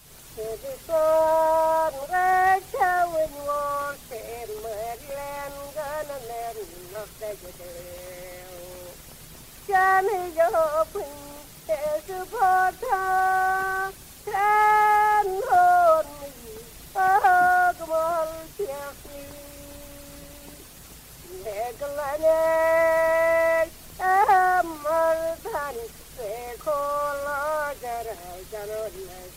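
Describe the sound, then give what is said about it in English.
A 1930 recording of unaccompanied sean-nós singing by a woman from County Mayo, Ireland: a single voice carries ornamented, wavering melodic phrases separated by brief pauses, with a steady background hiss running throughout. “Now, this was recorded in 1930, so listeners can expect some hiss.”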